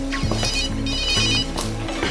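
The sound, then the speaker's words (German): A pink mobile phone rings in a city backpack at a bistro, a repeating electronic ringtone with a patterned melody of tones cycling in steady bursts, moderately loud with no voices. “Karl nahm sein pinkfarbenes Handy aus dem City-Rucksack, als das dezente Klingeln ertönte.”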